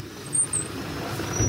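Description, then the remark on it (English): A truck's engine rumbles steadily, with a short, high-pitched squeal of brakes early on as it pulls to a halt at an antler dealer's gate in Lake County at sunset on a windy day. No one speaks. “by the time Hayes stops his truck at the antler dealer's gate”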